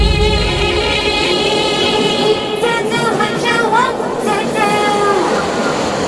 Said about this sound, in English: Train going by.